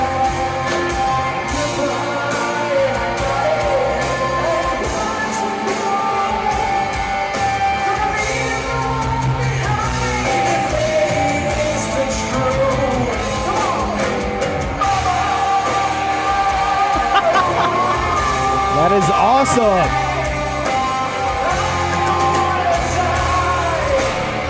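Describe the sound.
Loud live rock band performing a cover song, recorded by someone in the crowd, with dense distorted band sound, sung melody and crowd shouting throughout; one person briefly speaks over it.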